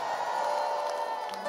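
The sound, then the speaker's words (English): A church audience shouting praise together during a sermon, a sustained, loud roar of overlapping voices, with a few higher whoops rising above the steady crowd noise. “Oh, those who shouted, you just got something.”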